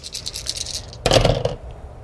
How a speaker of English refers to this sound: Wait, let me roll my extra dice.